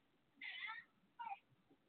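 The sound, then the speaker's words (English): A domestic cat meows twice in quick succession, a longer cry followed by a shorter one, clear against a quiet background with no talking. “Okay, my cat would have to start making sounds at the wrong time.”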